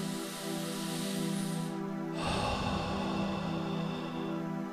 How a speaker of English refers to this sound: Breathing in and out to the count of 1, in through your nose and out through your mouth. For example, breathing in and out.